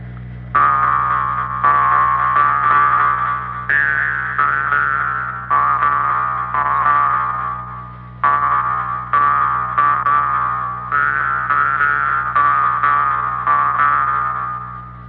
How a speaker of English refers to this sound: I've just heard one of the best Jews harps you were ever going to hear in this cotton pick in life. Would you like to hear a little more on that?